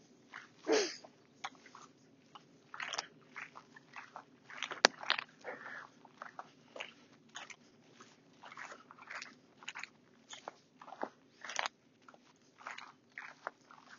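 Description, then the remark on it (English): Footsteps crunch through dry wheat stalks in a field, uneven, with sharp crackly bursts scattered at an irregular walking pace and no voices. “Just the sound of footsteps crunching over stalks of wheat now for you to enjoy as you contemplate whether Jockey Wilson is alive or dead and whether that would make any difference.”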